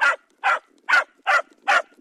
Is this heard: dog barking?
yes